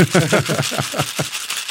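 cocktail shaker being shaken

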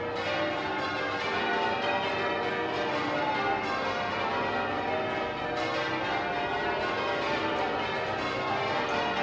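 church bells change ringing

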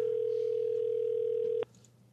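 telephone call ringing

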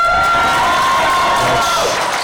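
audience cheering

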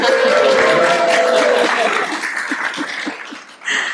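audience applause and cheering

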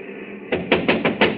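knocking on a door

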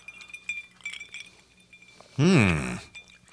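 glasses clinking

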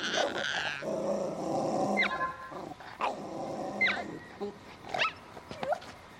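dog growling

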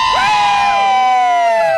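festival crowd cheering

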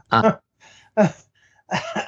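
throat clearing

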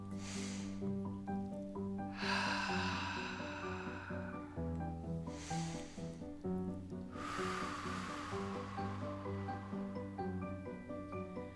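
deep breathing exercise

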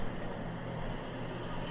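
traffic

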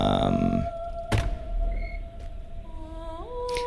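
door opening

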